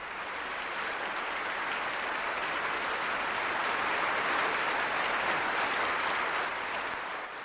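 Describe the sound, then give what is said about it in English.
A crowd applauds steadily for several seconds, a dense, even wash of many hands clapping that swells slightly in the middle before easing off. No voices are heard. “And clap your hands!”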